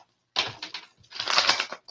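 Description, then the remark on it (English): A deck of tarot cards being shuffled during a tarot reading: two quick bursts of crisp, papery flicking and riffling, separated by a brief pause, with no voices. “I don't know why my cards is not shuffling like that.”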